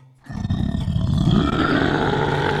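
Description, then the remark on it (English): A deep, rumbling monster roar as the gargantuan creature Fatulhu claws its way through an opened portal, bursting in after a brief quiet and holding loud and sustained, thick low growl with rough gravelly overtones, swelling slightly and never fading before it cuts off. “Through the opened portal, the summoned gargantuan Fatulhu finally claws its way into our world.”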